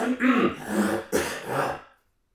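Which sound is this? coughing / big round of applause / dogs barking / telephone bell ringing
coughing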